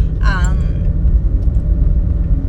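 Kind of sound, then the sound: vehicle, car driving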